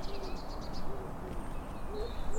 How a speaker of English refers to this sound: All doves and pigeons sound good.